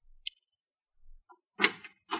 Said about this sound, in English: I asked where Ames was staying and went back up to his room, 672. A knock on the door produced results.